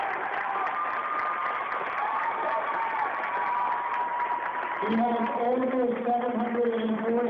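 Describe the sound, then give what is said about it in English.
A large crowd in a gymnasium applauds steadily during a timeout at a Vermont high school basketball game as Hazen recognizes longtime Windsor coach Harry Ledoux, a dense, continuous wash of clapping with cheering and raised voices rising over it toward the end. “As I mentioned in the pregame show at the coach's corner, and listen to the applause, folks.”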